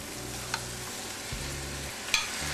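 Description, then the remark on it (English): Steady sizzling of cut-up chicken breast pieces sautéing in a pan over medium heat, a broad hiss with a low hum beneath and a couple of sharp clinks or pops standing out, no voices. “And now I'm going to put my cut up chicken breast in.”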